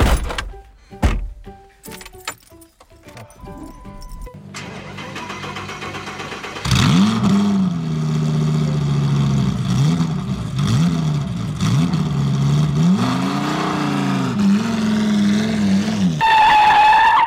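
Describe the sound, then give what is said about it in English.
A few sharp thunks like a car door shutting, a short lull, then a car engine starts up and drives off, its pitch rising and falling as it revs and shifts, as people get back in the car to go home. “So we'll go get back in the car now.”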